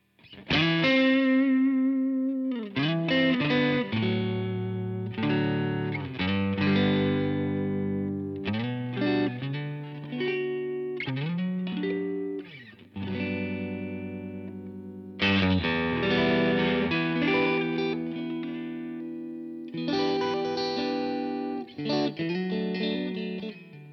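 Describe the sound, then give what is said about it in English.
An electric guitar played through a multi-effects pedal with heavy reverb strums bright, sustained chords and riffs, with notes ringing out into a washy reverb tail between phrases. It's loud, with no voices. “There's a lot of reverb, isn't it?”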